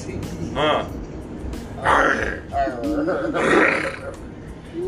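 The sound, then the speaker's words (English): A person imitates a lion's roar with a few loud, rough, guttural vocal bursts, with brief voiced sounds between them. “I know your daddy is a fucking lion.”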